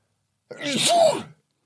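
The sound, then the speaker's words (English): A single loud sneeze bursts out with a sharp intake and a broad, breathy blast lasting under a second, surrounded by silence. “I think I got to sneeze.”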